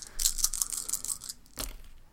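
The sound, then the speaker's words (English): Attraction dice and bonus dice are rolled in a game: they rattle and clatter in a quick run of sharp clicks for about a second, then land with one solid clack before trailing off. No one speaks. “Okay, so we have two all of our attraction dice and all of our bonus dice, so why don't you roll those?”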